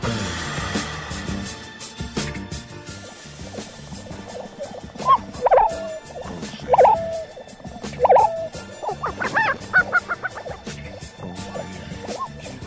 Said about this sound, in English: jet engines powering the mothership aircraft of vehicles like Virgin Galactic Spaceship 2 might disrupt the male lesser prairie chicken sexy invitation to all the lady prairie chicken for a sexy good time.